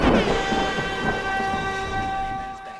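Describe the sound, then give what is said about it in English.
Heavy rain pours in a dense, steady roar during a thunderstorm and flash flood, with a low rumble of thunder at the start and a faint sustained tonal hum running underneath. No one speaks. “Actually, speaking of which, no better time for a flash flood.”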